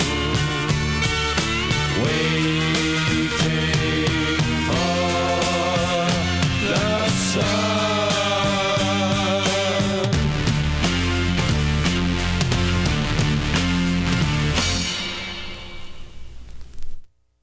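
A loud rock song plays with driving drums, bass and guitars plus a sung vocal, running steadily before fading out near the end.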